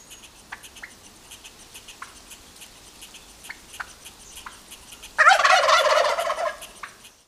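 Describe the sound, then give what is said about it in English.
A wild turkey lets out one loud, rattling gobble that bursts in after several seconds of quiet outdoor ambience with faint scattered chirps. The gobble lasts under two seconds. No one speaks. “Well, my main research project is focused on roost sites used by wild turkeys, and I'll explain what I mean by that.”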